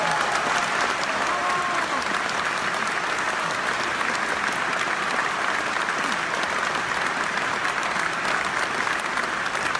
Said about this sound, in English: It's just the final crash of the drums, the cymbals, and the timpani there. I'm sorry. I wish I could do more for you, but you do hear the applause and the roaring for each section as they stand. So it's really a wonderful scene.